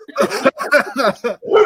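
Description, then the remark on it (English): A dog barks in a quick run of about five loud, harmonic barks, each following right after the last, with no talking over them. “Your opinion is valid, puppy.”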